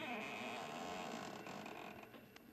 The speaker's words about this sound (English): Well, we've opened the front door now. Maybe you heard the hinge squeak a little.